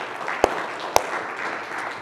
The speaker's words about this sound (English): So come on, let's give our Homestead campus a round of applause.